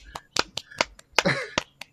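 A handful of sharp hand claps, about eight in two seconds, coming in an uneven, scattered rhythm like a small group applauding briefly, with no voices.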